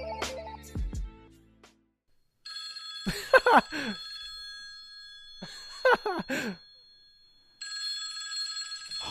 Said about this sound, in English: I hear the Batman phone. Where's that coming from?